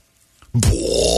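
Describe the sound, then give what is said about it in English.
After a brief silence, a voice abruptly blurts out a loud, buzzing, sputtering noise that imitates a fart and holds it to the end, harsh. “His farts were so loud, according to GPT, his farts were so loud they could be heard for a city block.”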